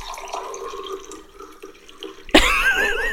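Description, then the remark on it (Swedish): After a few seconds of low background hum, coffee starts pouring into a cup, a steady trickling stream whose gurgling tone climbs as the cup fills. “Pouring coffee sound effect”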